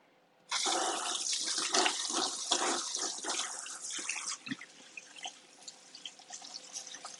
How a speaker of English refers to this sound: Wash my hands off real fast, y'all.